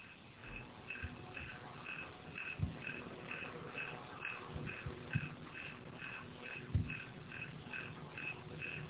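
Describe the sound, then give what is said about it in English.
A faint, steady cricket-like chirping from a fan repeats at a quick, regular pace in the background, with occasional soft low thumps and no talking. “What is that cricket-like sound I'm hearing in the background?”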